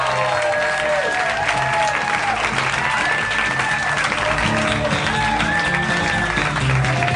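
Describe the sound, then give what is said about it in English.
Loud, sustained applause from a live Harmontown audience as Dan Harmon is welcomed, a dense wash of clapping with scattered cheers and whistles rising above it, continuing steadily throughout. “Wow, what a crowd.”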